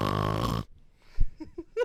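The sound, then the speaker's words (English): A voice imitates a loud, rasping snore in one harsh burst of about half a second. It cuts off abruptly, followed by a few faint, brief vocal noises. “Yeah, his snoring was Blix.”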